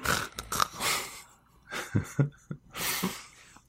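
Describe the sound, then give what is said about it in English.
During a tabletop role-playing game, a person mimics snoring to show a character going to sleep: a few rough, raspy snorts and breathy hissing exhales in an uneven rhythm, fairly loud, with no talking over it. “the snore noise is the international tabletop sound for.”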